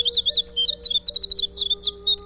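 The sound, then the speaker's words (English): A winter wren (Troglodytes hiemalis) sings a fast, tumbling run of high, bright chips and trills that pours on without pause, with a faint steady low hum underneath. “Troglodytes hivernalis, the winter wren, is today's Talkin' Birds Featured Feathered Friend”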